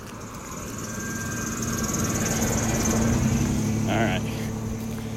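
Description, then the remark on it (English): A car drives past outdoors by a wide open field, its broad road rumble swelling to a peak and easing off over a few seconds, with a steady high insect-like whine and a brief chirp in the background. “Hang on, let's wait for a car to go by here, Reagan.”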